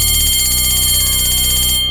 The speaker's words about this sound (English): And that is the first period bell. Guess we better go.